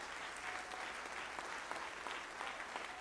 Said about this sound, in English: Clap your hands to the Lord in Jesus' name.